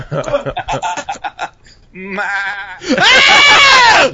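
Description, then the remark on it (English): After a few seconds of talking, a person lets out a loud, wavering goat-like bleat, building from a shaky nasal tone into a strong, quavering cry held to the end. “Please give us your best goat sound or goat imitation.”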